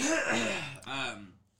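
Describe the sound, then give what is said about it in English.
A person clears their throat in two rough, rasping bursts, the second shorter and more voiced, fairly loud and alone, then fading into quiet. “Yeah, I gotta fucking clear my throat.”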